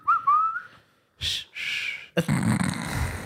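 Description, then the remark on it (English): A short, wavering whistle rises in pitch, then breaks into breathy, airy blowing sounds and a rough, noisy burst, like someone struggling to hold a whistled note. “Can you not whistle?”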